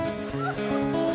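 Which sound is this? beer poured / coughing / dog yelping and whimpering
dog yelping and whimpering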